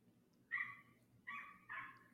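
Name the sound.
dog barking outside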